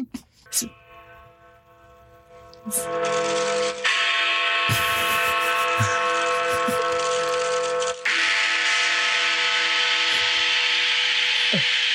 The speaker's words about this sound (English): do the bong